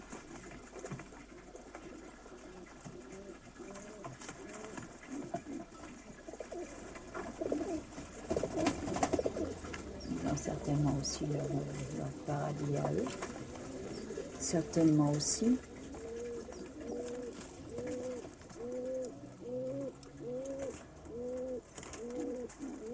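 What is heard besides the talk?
pigeon cooing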